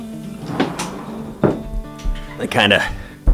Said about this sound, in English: I'm going to shut this door real quick. Give me one second.